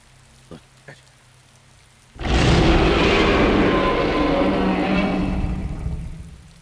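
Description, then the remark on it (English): A storm sound effect: after two faint taps, a sudden loud burst of thunder breaks into heavy, steady rain that roars on for several seconds before easing slightly at the end. “A couple lightning strike to the left, lightning strike to the right.”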